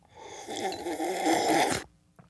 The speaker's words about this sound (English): You literally sound like you're snoring. It's the slurp, swish. Suck, slurp, swish. The suck, slurp, swish, suck?